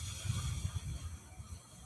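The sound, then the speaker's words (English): A slow, deep exhale through both nostrils during a guided deep-breathing exercise, heard as a soft, steady airy hiss with a low rumble, fading gently over about two seconds with no talking. “And then breathe it all out.”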